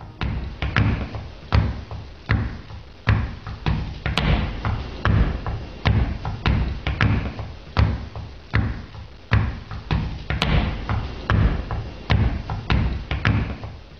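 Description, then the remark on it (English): Heavy, rhythmic foot stomps of the Mount Meigs Stomp, played at a soundcheck in the UK, pound out a steady, repeating beat, each thud landing with a deep low punch and quick attack, with no voices, just the driving stomping pattern throughout. “something he learned as a kid that he called the Mount Meigs Stomp, the rhythm track for this podcast theme song.”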